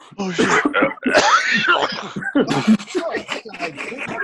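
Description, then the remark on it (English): A person coughs several times in harsh, loud bursts, one long raspy fit in the middle, with voices and laughter-like sounds mixed in around them. “niggas coughing and shit.”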